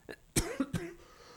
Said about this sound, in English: Here we are on a live call, and I've got a cough.